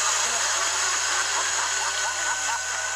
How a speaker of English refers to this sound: There's the cardboard cutout of Bray Wyatt, his previous gimmick as the cult Wyatt family leader, of course. Now he's got a like a chainsaw, cuts the cardboard standee of Bray Wyatt in two.